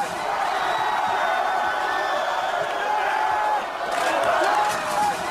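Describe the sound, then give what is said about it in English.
A rioting crowd in Philadelphia roars and shouts in a dense, unbroken wash of voices as a car is flipped over, with whoops rising above the din. The noise swells into a louder, brighter surge near the end. “That's a car being flipped over.”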